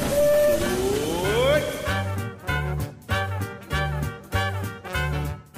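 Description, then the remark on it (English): A Disneyland Railroad train, the Disneyland Limited, pulls away from a station at Disneyland for a grand circle tour of the Magic Kingdom. A rising, wavering whistle comes first, then a steady, slow rhythm of loud, heavy chugging pulses, roughly one per second, with nobody speaking. “The Disneyland Limited, now leaving for a grand circle tour of the Magic Kingdom.”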